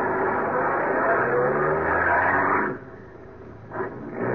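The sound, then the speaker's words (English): A car engine roars loudly and steadily for a couple of seconds as one car slowly overtakes another and pulls alongside, late on a road with no other traffic, then drops away abruptly, followed by a brief quieter engine surge near the end. “Slowly, I overtook him, pulled alongside.”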